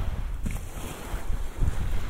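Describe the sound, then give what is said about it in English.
Outdoor ambience on a white sand beach in the Chagos Archipelago, with turquoise water and coconut trees: steady wind buffeting the microphone and a low rumble of water and surf, continuous and fairly loud, with no voices. “So I'm on this beautiful white sand beach, framed by turquoise water on the one side and coconut trees on the other.”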